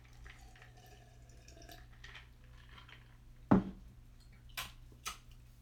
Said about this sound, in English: Stop crunching ice on them, man. That's not cool.